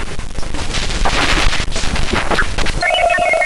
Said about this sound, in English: That's a deep space transmission. Yeah. And you hear the little... That's crazy.